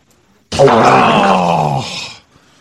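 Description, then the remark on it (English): A loud, buzzing fart noise blown by mouth into a phone, lasting under two seconds. Its low, groaning rasp holds steady before trailing off, with no talking. “I just fart digitally through the phone and into your face.”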